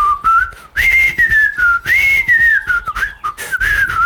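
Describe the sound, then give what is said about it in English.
A person whistles a flowing melody meant to mimic bird song, with long sustained notes that slide up and down in pitch, broken by short breaths, loud and alone for about four seconds. “I think that whenever you would used to go for a walk, there would be this bird song, right?”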